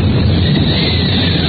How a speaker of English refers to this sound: The deafening crash and roll of thunder combined with the banshee howl of the wind. The convulsion of sound is maddening.